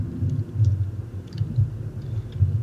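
Faint, irregular tapping of keys on a computer keyboard, a few scattered clicks in quick bursts, sitting beneath a steady low rumbling hum, with no one speaking.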